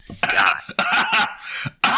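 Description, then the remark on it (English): A loud bout of throat clearing in several rough, raspy bursts with short gaps between them, heard on its own with no talking. “Sorry. Had to clear my throat.”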